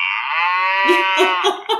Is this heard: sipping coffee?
no